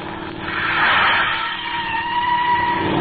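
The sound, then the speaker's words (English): A car engine revs hard and climbs in pitch, a sustained roaring drone with rising whine, as the car chases another vehicle turning through side streets, loud and continuous for the whole three seconds. “He's turning again up ahead. We'll get him.”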